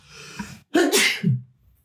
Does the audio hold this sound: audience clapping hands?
no